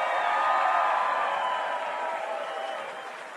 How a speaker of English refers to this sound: We have, I'm told, some 30 Golden Cats / former players here this week for this bowl game. For all of those Cats, give them a nice round of applause.